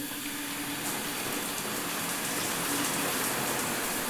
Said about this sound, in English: But what I'm really excited to see is my hotel bathroom. I'm about to turn on the faucet. Here's the shower.